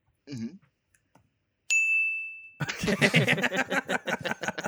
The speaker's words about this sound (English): I got the bell. Yeah. Thank you. Okay, can I break out my own bell? Yeah.